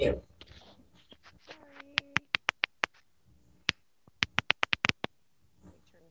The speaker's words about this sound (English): We can hear you typing a lot louder than we can hear anything else.